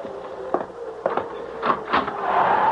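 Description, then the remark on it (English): A front door, stuck open, bangs and rattles as wind gusts through, with a few sharp knocks over a steady rushing noise that swells louder toward the end. No voices. “Doctor, will you close that front door? It's blown out every candle in the room.”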